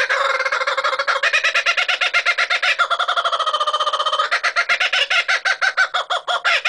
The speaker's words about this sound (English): Like chickadee, the name kookaburra is onomatopoeic. It's derived from the world-famous cackle made by these birds.